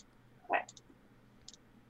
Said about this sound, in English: Okay, so you're rolling four dice then, and you already have two successes.